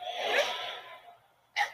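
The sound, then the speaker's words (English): A sharp, breathy sneeze bursts out and fades over about a second, followed shortly by a second brief, hissing burst. No speech is heard. “God bless you.”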